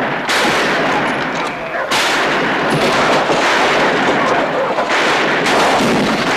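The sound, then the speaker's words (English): Dense, continuous gunfire from a western movie scene in which the daughter character Patience shoots up the town, with rapid overlapping shots and crackling bursts forming a loud, chaotic barrage throughout, with no clear pauses between volleys. “She's even shooting at her dad and her brother, you know, the mayor and everything, you know.”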